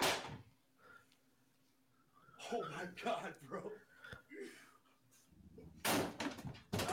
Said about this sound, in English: He's just like smashing the door still. That's his bedroom door at his parents' house.